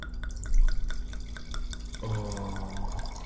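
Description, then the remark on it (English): Wine poured into an IKEA wine glass: a few soft drips at first, then a steady gurgling stream of liquid that continues quietly to the end, with no talking. “Hopefully the microphone picks up this little pouring action.”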